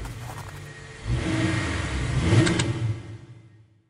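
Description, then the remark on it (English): A single car's engine revs and grows louder as it approaches on an icy bridge by the Leighton Tube station in East London, late at night; this is the car that struck Cornelius Cardew. The low roar builds to a peak before trailing off quickly into silence. No one speaks. “But as Cardew crossed the street, a single car suddenly materialized on the bridge.”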